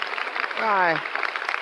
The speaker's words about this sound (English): What is it? Why, it's you. They're applauding you.